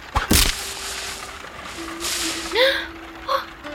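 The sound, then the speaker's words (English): An arrow is loosed from a bow at a high tree branch to knock loose a caught kite: a sharp twang with a burst of noise, then a lingering hum and a rising whistle as it flies, with a brief chirp at the end. “Good thing I have my bow. Will shooting an arrow work, sir?”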